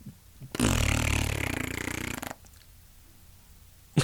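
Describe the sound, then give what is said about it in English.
A loud, drawn-out fart noise, a raspy, sputtering buzz lasting nearly two seconds that fades slightly toward the end before cutting off, with no one speaking. “Fart noise.”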